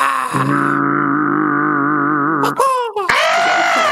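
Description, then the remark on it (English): A person makes a foghorn-like noise with their throat: a long, loud, low droning tone that wavers slightly, then swoops downward before a second harsh, strained blast. No one speaks. “I have no idea the science behind how I'm making that noise. I don't. I do something with my throat.”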